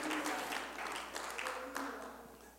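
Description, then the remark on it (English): An audience claps hands unto the Lord in praise in a steady, dense wash of applause, with faint voices and a sustained tone underneath, gradually thinning toward the end. “Somebody ought to clap your hands unto the Lord and say, thank you, Jesus.”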